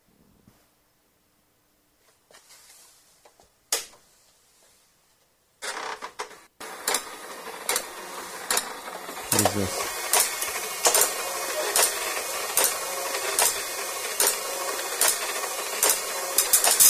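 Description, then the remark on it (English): A dot matrix printer buzzes and rattles steadily, its head striking in rapid bursts with regular sharp clacks as each line advances, fairly loud after a brief question is spoken. “Yep, it's a dot matrix printer.”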